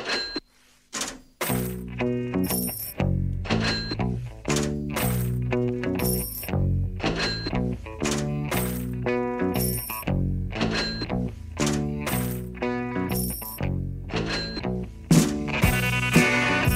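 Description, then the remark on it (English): Old mechanical cash register sounds from a cash register with big buttons, ringing and clinking coins, repeat in a steady rhythmic loop over a deep, looping bass line in a song. The music is loud, with no voices. “millennials, how many of them, when they hear that song, recognize the cash register?”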